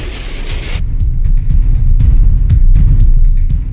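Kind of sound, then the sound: nature, rain falling outside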